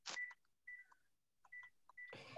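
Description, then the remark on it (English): A home landline phone rings with an incoming spam call, short electronic tonal bursts repeating in an uneven pattern, fairly faint, with no talking over it. “That's a home phone.”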